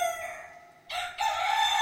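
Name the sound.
rooster crowing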